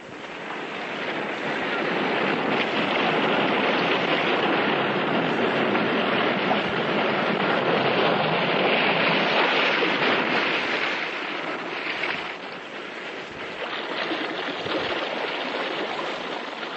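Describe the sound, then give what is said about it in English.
A continuous roar of restless sea waves surging inside a cave echoes heavily, dense and loud throughout with slow swells and dips. No voices are heard. “In this cave by the restless sea, we are met to call from out of the past stories, strange and weird.”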